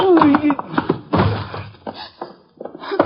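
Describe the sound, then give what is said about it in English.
A chaotic wrestling scuffle between people: heavy thuds and bumps land irregularly, one especially loud, while strained voices grunt and cry out between the impacts. “Hey, let go of me! Let's wrestle, friend. This shouldn't take very long.”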